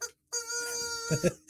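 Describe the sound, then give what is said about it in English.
A chicken being held up lets out a single long, drawn-out distressed squawk. It holds steady for about a second, then breaks into a couple of rougher, choppier notes at the end. “What are you going to do with that chicken?”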